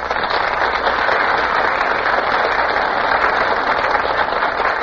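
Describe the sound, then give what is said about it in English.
Steady, dense applause from a large studio audience as Pat O'Brien, Carol Landis and Donald Crisp enter from stage left, a loud, even wash of clapping with no pauses and no voices on top. “Ladies and gentlemen, Pat O'Brien, Carol Landis, and Donald Crisp are just entering from stage left, and the audience bursts into applause.”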